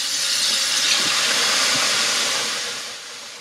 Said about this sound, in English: Now, she's just drained all of the milky water off of the chicken, and... Now, I'm going to be adding a second set of water... And she's doing it all over again. So here's bath number two.